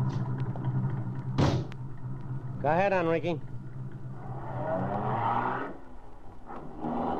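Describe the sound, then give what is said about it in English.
A car door thuds shut with one sharp knock, a man speaks briefly, and then an engine revs up and the car pulls away over a low, steady rumble. “Get in this car.”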